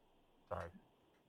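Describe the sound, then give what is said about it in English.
A single short, loud cough into a microphone by a producer during a trivia game, with a blunt burst followed by a faint tail, against a quiet background hiss. “You cough right in the mic there.”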